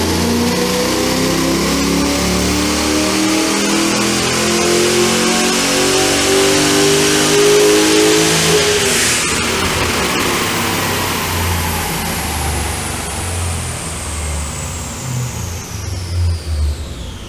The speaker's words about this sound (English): And there you go. You saw that LS3 on the dyno, high output, 340 kilowatt, full exhaust system, OTR.